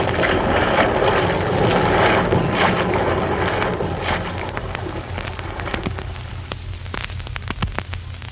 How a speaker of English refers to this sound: You aren't going to run up more sail in this gale, are you?